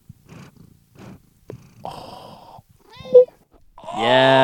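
One of Oscar's cats, having just walked into the room, meows several times over a soft, low rumbling purr, the calls growing louder and ending in a long, strong drawn-out meow.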